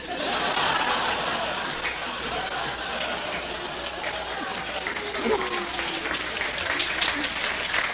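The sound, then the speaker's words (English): A crowd claps steadily for several seconds, applauding a boy's cheeky answer of "1 what?", the dense applause mixed with scattered laughter and murmuring voices, with a muffled, band-limited quality typical of an old recording. “They're applauding to chutzpah, his kid.”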